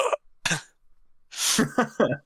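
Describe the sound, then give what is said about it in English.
A person makes close, exaggerated hacking coughs: two short bursts, a pause, then a harsh, raspy heave followed by three quick gagging coughs, as if bringing something up. “I can cough them up on command.”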